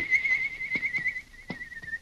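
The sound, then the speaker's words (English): A sustained high-pitched whistle, an agreed-upon signal taught by Tonto in The Lone Ranger radio drama, holds one steady warbling tone for about two seconds, with a few soft thumps and clicks underneath. No one speaks. “Then he gave the signal agreed upon.”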